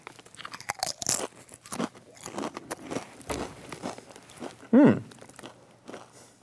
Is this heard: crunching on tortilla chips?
yes